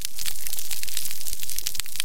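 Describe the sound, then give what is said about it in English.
Snapping shrimp crackle underwater in tropical waters in a dense, continuous wash of sharp, bright clicks, like frying fat or crumpling cellophane, holding steady and fairly loud throughout with no voices. “Put your head underwater anywhere in the tropics, any time of day, any time of year, you'll just hear this crackling sound, and that's the snapping shrimp.”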